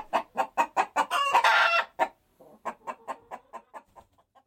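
Chickens cluck in a quick, steady rhythm, broken by a loud, drawn-out rooster crow, then the clucking resumes and trails off more softly. No one speaks.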